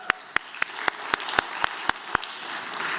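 Applause from an audience, with about nine sharp, evenly spaced claps standing out over a soft, hissy wash of noise that lingers after the clapping stops. No one speaks.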